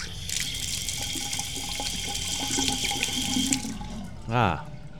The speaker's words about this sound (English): Hello, right now we are in the bathroom and we're washing our hands. See? You can hear the water. Let's turn on the water. Listen to this.